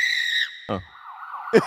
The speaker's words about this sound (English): Sirens are on our end. This is a great one of like, fire department.